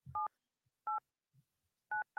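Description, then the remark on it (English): Four crisp beeps of a telephone keypad dialing a number that starts with 9, each a short dual-tone burst, spaced unevenly with the last two close together, heard clearly with a faint low thump near the start. “I wonder if it's going to work from this phone. It should. It's a crazy number.”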